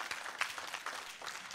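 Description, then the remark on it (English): A church audience applauds the Lord after a prayer, a dense, steady patter of many hands with bright sharp crackles, fairly quiet and continuous with no voices over it. “You may be seated after you applaud the Lord one more time.”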